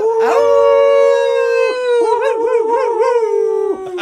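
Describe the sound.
People imitate a wolf howl in support of the Chattanooga Red Wolves, with one long, loud, sustained wail that wavers and warbles in the middle before trailing off, with no talking.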